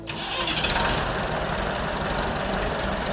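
A Massey Ferguson 165 tractor engine runs steadily and loudly in Perry, Iowa, a rough, knocking diesel chug that holds an even level throughout, with no voices over it.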